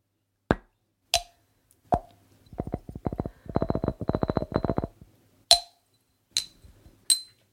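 Sharp, ringing clinks sound alone in a quiet space: a few single strikes spaced apart, then a quick rattling burst of rapid clinks, and three more separate clinks at the end.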